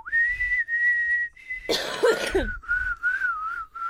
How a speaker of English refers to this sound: Perfectly nice song. I could obnoxiously whistle it.